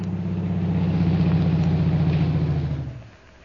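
A car engine hums with a steady low rumble, then winds down and fades out near the end as the vehicle comes to a stop, leaving only faint background noise.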